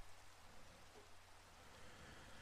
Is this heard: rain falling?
yes